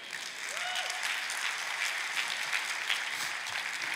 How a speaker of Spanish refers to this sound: Que te da un aplauso, Cristo.